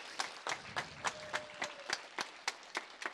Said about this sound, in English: If we can just have another round of applause for everyone and just the awesome blessing that has happened today.